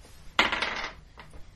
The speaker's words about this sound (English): However, I did roll a 19 on the dice, so that will quite certainly hit, because I rolled less than that last.